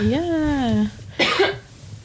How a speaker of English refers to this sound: Yeah. Oh, sorry. Sorry. Still coughing.